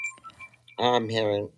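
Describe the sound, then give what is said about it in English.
A phone rings with an incoming call: faint electronic tones at first, then a loud, buzzy, steady ringing burst that lasts under a second. “I'm having a phone call. There we go.”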